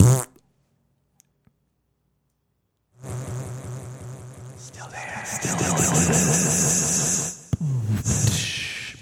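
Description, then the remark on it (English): A voice blows a long, wet, sputtering raspberry into a microphone, imitating a fart; it buzzes and flutters for several seconds, growing louder before cutting off, with a brief second burst. “No, I'm going to do a fart in the microphone.”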